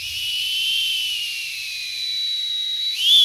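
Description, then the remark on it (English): A social media coordinator tries to imitate an oscillating lifeguard whistle: one long, breathy, airy whistle held for about three seconds, drifting slowly in pitch with little warble, then jumping briefly higher at the end. “I asked some of my KUT coworkers to try doing the oscillating whistle”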